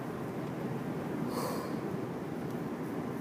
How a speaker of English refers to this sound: Excuse me, lots of yawns today.